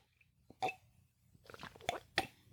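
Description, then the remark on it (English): Someone takes a big sip of a drink: a soft slurp followed by a quick run of wet mouth clicks and gulping sounds, quiet and with no talking. “So now that we've gotten the housekeeping stuff out of the way, hold on, I need a sip.”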